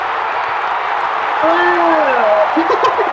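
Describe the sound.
A large rugby crowd cheering in a steady, dense roar of many voices, with a rising and falling tonal call riding over the noise partway through.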